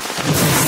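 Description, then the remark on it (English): A sudden, loud crack of thunder from a lightning strike bursts in after a brief quiet moment, then holds as a harsh, rumbling roar, with no voices. “You have a 90% chance of surviving a lightning strike.”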